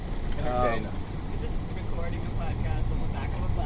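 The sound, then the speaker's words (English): A steady, low engine rumble fills the inside of a moving bus in Kansas City, carrying tired passengers after the Big Slick 10 bowling tournament, droning continuously with faint murmuring voices and occasional rattles over it. “Okay, so I love how quiet the bus is.”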